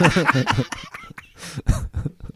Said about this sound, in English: Clear your throat multiple times. And you keep doing it for some reason.